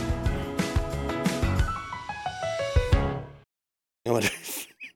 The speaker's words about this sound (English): I wonder if you got me clearing my throat just at the end of the opening there. Way to go. Nice way to ruin the intro there, Rabbi.